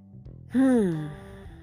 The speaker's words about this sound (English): So take a deep breath in. I felt like I just now needed a really big cleansing breath. Take a breath in and breathe.